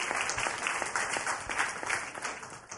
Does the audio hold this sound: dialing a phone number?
no